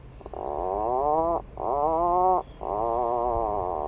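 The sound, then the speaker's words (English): An Atlantic puffin, a small seabird with a bright orange beak, on a tiny remote island off the coast of Maine in summer, gives three long, creaky, groaning calls, each a drawn-out buzzy moan with a slight rising pitch, separated by brief pauses. The calls are fairly loud, with no talking. “Believe it or not, you're actually listening to an Atlantic puffin, a small seabird with an iconic bright orange beak, once hunted to extinction in New England.”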